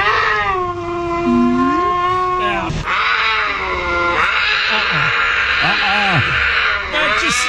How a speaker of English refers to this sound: All right, so number two least favorite animal mating noise, that's where we're going with the cougar.